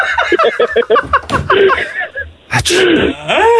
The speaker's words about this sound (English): Thank God for that sneeze of yours.